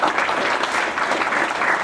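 An audience claps steadily, a dense, even wash of many hands at a fairly loud, constant level with no talking over it.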